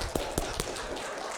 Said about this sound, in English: He's clapping.